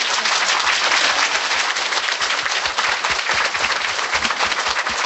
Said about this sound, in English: Okay, here for the singer. Singer. One more time, applause.